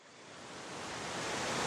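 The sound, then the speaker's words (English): A dense, steady roar of rushing water from an intense river waterfall, swelling gradually louder over a couple of seconds with no voices. “So here we are, our first waterfall. It's been a rough day, and this waterfall is intense.”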